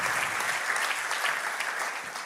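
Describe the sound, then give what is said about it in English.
A crowd claps for the team who worked to run Alpha at Bolton and Horwich, a dense, bright wash of many hands at a fairly even loudness that tapers slightly toward the end. No voices stand out. “Can we just give them a round of applause, everyone that worked so hard, put those hours in.”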